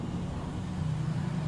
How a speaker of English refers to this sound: I apologize for the clanking of the garbage truck. You can hear it.